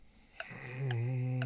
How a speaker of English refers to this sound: But hurry up. Clock's ticking.